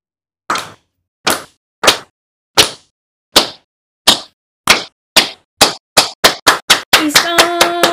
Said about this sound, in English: Essentially, an isang bagsak is a slow clap with no practice, and then we end it with a big isang bagsak, and then we clap and woo together.